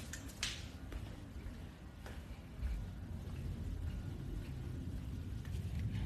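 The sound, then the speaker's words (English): A jet aircraft passing overhead outside, heard as a steady low roar that swells slightly partway through, with a few faint clicks early on and no one speaking. “Oh, that's a jet.”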